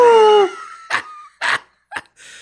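A loud, tonal howl slides downward and fades out, followed by three short, rough, breathy bursts spaced about half a second apart, with a faint hiss at the end.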